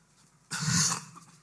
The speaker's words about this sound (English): Excuse me. Shouldn't have coughed in the mic. You might have to sanitize this thing afterwards.